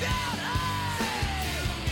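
A loud punk rock song with distorted guitars and pounding drums, a raw yelled lead vocal backed by shouting gang vocals, dense and driving throughout.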